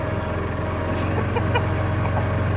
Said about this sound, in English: Over here we have our birdhouse. Oh, a bird.